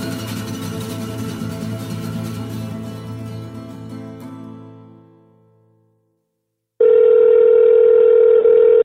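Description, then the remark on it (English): Music fades out into a brief silence, then a loud, steady telephone ringing tone on a call sounds for about two seconds with a short break near the end. Nobody speaks. “It's ringing.”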